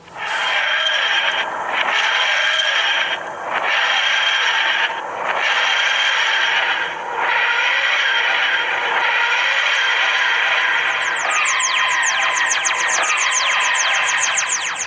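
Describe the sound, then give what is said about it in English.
A loud, grinding, wheezing TARDIS time-travel effect surges in repeated rising-and-falling waves, ending in a flurry of high, sweeping electronic chirps. No one speaks. “let's get back in the TARDIS. Okay, I'll push the controls.”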